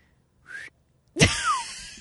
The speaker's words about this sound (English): I can't whistle with a mask on.